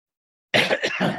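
cough

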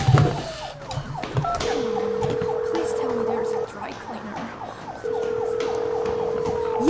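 police siren

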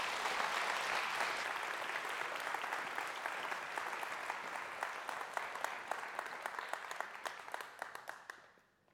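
audience applause

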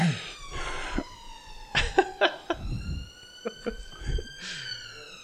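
emergency vehicle siren passing

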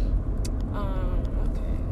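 car driving on road

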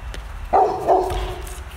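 dogs barking

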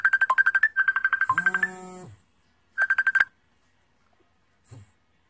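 phone ringtone

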